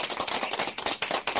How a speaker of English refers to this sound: I love the applause. I know there's so many people in the studio,